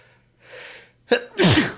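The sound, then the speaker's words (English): A single loud sneeze: a breathy inhale builds up, then a sharp explosive burst followed by a forceful noisy release, with no talking. “I don't know if we'll edit the sneeze out or we'll just leave it in or whatever.”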